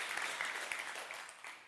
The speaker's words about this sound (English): Give these guys a round of applause.